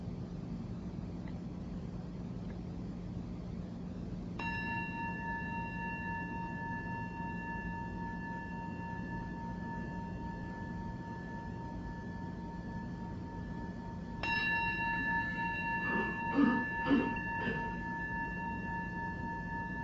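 meditation bell ringing

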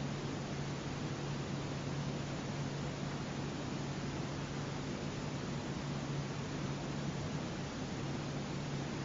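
air conditioning hum

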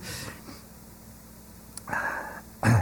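coughing

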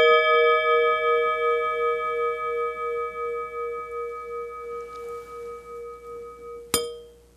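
bells ringing

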